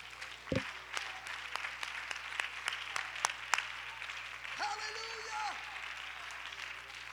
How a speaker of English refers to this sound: Would you clap your hands and give him praise this morning?